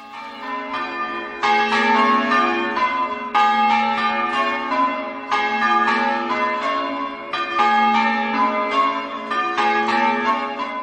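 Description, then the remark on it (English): A peal of the Cottingham church bells rings continuously, overlapping strikes in a steady, rolling change-ringing pattern, loud and resonant with no voices present. “Simon also sent us a recording of the Cottingham bells.”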